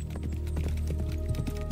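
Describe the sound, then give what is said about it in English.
Steady hooves clip-clop at a walking pace, a string of hollow knocks over a low hum, with no voices. “It looks like a horse, but there's something very magical about it.”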